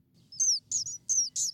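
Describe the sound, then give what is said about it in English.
A sparrow sings a quick series of bright, high chirping notes, about four short phrases in a row, clear over a faint low background rumble. “In a study done by behavioral ecologist Elizabeth Derry Berry and her colleagues, they found that sparrows during the COVID-19 pandemic were singing at a 30% softer than normal.”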